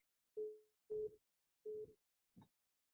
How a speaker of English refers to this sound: And obviously my niece is trying to call me.